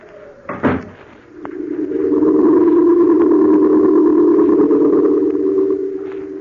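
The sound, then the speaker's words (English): A man leaving casually shuts a door behind him once with a short, solid thud near the start. A steady low droning tone then swells in and holds to the end, with no one speaking. “I shut the door behind me, very casually, just as if I really were going to London.”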